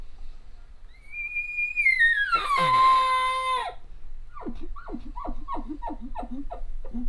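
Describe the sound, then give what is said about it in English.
A voice imitates the little hollow sound a bull makes when it comes in nonchalant and tries to call the cow: a high, whistling tone holds, then slides downward with a raspy break, followed by a run of about seven short, rhythmic grunting chuckles. “And some bulls will come in kind of nonchalant, and they may try to call the cow, and they'll have that little hollow sound.”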